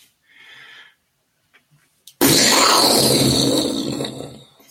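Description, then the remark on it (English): Someone vocally imitates a grenade: a soft hummed whistle, a pause with a few small clicks, then a sudden loud, rough, hissing blast that roars for a couple of seconds before tapering off. “Okay, and now the grenade.”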